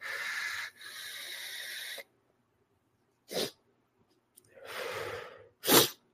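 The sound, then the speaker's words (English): A long, breathy inhale gives way to a few sharp, explosive sneezes spaced about a second apart, from a person with the sniffles caught from a cold apartment. They are fairly loud, with no talking. “My apartment is cold as hell. So it gave me the sniffles today. So I apologize.”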